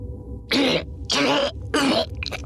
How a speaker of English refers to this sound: You'll help me to the escape pod. He said between hacking coughs.